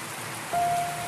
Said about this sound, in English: When day broke, grey and chilly, the storm had diminished to a steady soaking rain.